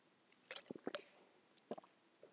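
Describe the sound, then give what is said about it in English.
Someone drinks water into the microphone: a series of small wet gulps, lip smacks and swallowing clicks, fairly soft and irregular, with no talking. “And you all just heard me drink that on the microphone, so that was a treat for you.”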